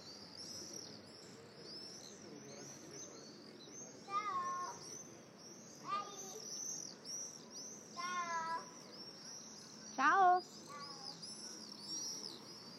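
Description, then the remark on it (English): A dense, steady chorus of sparrows chirping fills the background, with several louder, nearer calls rising out of the chatter every couple of seconds. No one speaks. “It's that time of the day also in which all the sparrows are out.”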